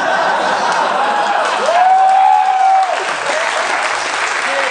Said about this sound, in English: I don't know why that got an applause, and I'm ashamed of this planet.